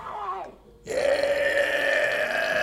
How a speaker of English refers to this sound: Burp.